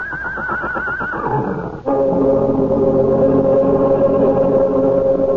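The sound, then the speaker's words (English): A huge horse neighs loudly, a shrill quavering whinny that drops into a long, sustained, brassy blare lasting several seconds, with no one talking. “looks from the small man, writhing in pain, to the huge horse, his ears flat against his skull, his eyes rolling wildly at the farmer.”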